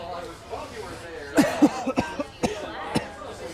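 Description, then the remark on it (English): A coughing fit from a cough that has lasted about three weeks: a cluster of harsh, raspy coughs bursting out in quick, uneven succession, with a faint murmur of background voices beforehand. “I've had this cough for like 3 weeks.”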